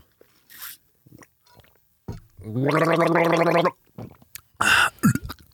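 A loud, bubbling gargle with a throaty, voiced rattle runs for about a second and a half, framed by a few short breathy hisses and splashy mouth noises before and after.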